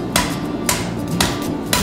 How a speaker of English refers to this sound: I'm letting gravity do most of the work. It could hurt me. It's real. There's sparks. Whoa. You flip it back on the side, hammer it straight again, go back again. Wow, look at the sparks every once in a while shoot off.